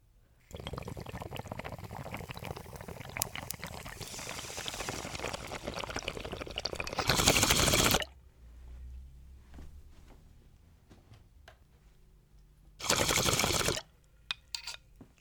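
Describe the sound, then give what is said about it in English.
Continuous water bubbling from an 18-inch beaker bong during a rip, a gurgling churn lasting several seconds that ends in a louder airy rush, followed by quiet and later a short, loud burst of breathy noise. “I'm going to start off this episode with a lovely bong rip”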